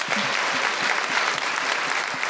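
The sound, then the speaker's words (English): A crowd applauds Leyla Hussein steadily, many hands clapping in a dense, continuous patter at an even, fairly loud level throughout, with no voices standing out. “Every time Leyla Hussein speaks, she gets a round of applause.”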